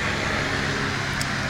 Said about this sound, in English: Helicopter. Yeah. Just checking on us.